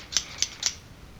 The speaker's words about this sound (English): I take my scissors. I snip off the part of the tape on which she is described.